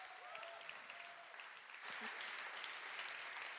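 An audience claps steadily, a dense patter of many hands that swells louder partway through, with a few faint whistles near the start and no one talking.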